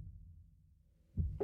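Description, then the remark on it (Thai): Low, muffled thumps like a heartbeat pulse beneath a soft bass hum in a song, then two stronger, louder beats land close together near the end, with no voices present. “มันจะได้ยินเสียงเหมือนเสียงหัวใจ เหรอ นะครับ เนี่ยคุณฟังดิ เออว่ะ ผมชอบกิมมิคตรงนี้มาก”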